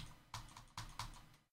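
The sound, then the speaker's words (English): A handful of sharp mouse clicks in quick, slightly uneven succession, about four or five taps over a second and a half, with no talking. “I'm clicking. Why you no click?”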